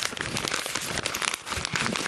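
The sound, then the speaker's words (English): Continuous paper crinkling made as ASMR, a dense stream of crisp rustles and small crackles that fills the whole stretch with no pauses and no voices. “That's crinkling of paper.”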